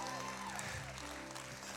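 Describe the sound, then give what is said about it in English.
An audience claps together as a hand clap offering of praise to the Lord, a steady, dense wash of applause, loud throughout, with faint voices and a sustained musical tone underneath. “Give the Lord a hand clap offering of praise.”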